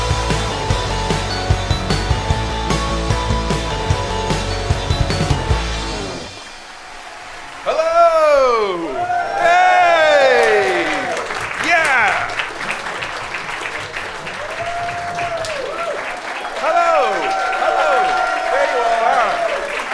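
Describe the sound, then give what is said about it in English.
A capacity crowd at the King's Place Theater applauds steadily at the opening of the live show How To Wrestling Live 3, while rising and falling whoops and cheers ring out over the clapping, following a short burst of loud music at the start. “Let's take to the stage at the King's Place Theater in front of a capacity crowd.”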